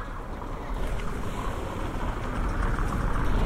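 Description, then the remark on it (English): A car rolls across a stone bridge in Nyons on a very hot day, its steady low rumble of tires and engine filling the scene, growing slightly louder, with no voices. “This is the car crossing the bridge.”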